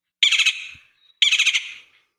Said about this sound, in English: So we are constantly plagued by these woodpeckers because they love to work in all of our trees. And You can hear them laughing at us.